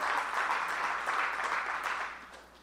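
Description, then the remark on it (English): Light, scattered applause from about a third of an audience during a sermon, a steady patter of hands clapping at moderate volume that thins out and fades toward the end, with no voices over it. “The reason there was only about a third of you that clapped was because that's a very, very difficult word.”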